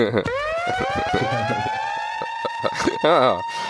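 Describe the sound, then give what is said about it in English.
A siren sound effect played from a soundboard winds up in pitch and holds a loud, steady tone, then breaks into a rapid wavering yelp near the end, with people talking underneath it. “Do you want to do the siren at some point while you're doing it?”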